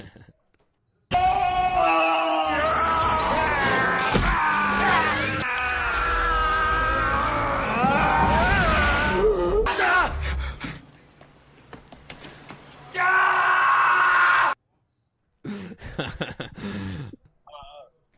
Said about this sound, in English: If I absolutely hated it, it's just this montage of Arnold Schwarzenegger screaming.